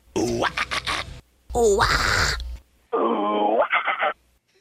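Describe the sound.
Three short vocal bursts in a row from three people, each imitating a guttural metal song's growl with harsh rising and falling tones, separated by brief silences; the last one is thinner and higher-pitched.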